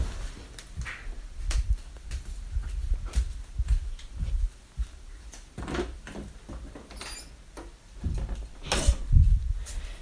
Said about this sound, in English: I'll just close the door. Give me a second.